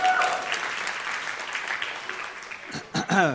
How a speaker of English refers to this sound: They are amazing. Oh, and they even bring water. Oh, extra round of applause for